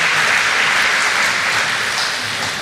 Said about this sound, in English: Let's give Wes a round of applause for his word.